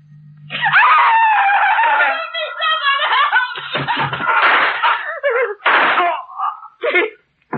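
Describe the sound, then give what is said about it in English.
A woman screams in terror, loud, her shrill, wavering cries rising and breaking into ragged gasps over several seconds, with brief pauses between bursts. “I won't scream”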